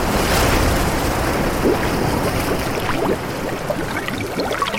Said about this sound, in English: I wanted for the listener to be dragged underwater and to get that sensation of rushing water and bubbling in the ears and almost that kind of claustrophobic feeling you get from being submerged underwater with the waves crashing over you.